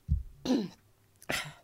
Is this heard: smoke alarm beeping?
no